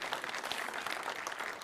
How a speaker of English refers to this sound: You can clap for that. That won't hurt you a bit.